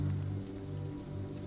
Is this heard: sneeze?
no